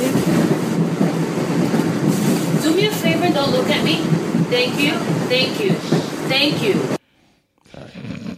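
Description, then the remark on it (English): Steady, loud rumble of a moving subway car from inside, with voices talking over the din; the noise cuts off abruptly near the end, leaving near silence. “This is another Subway lady.”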